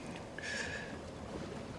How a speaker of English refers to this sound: You ever heard of the Golden Thing? Sure. It's a boat. A boat? Big schooner, somebody said.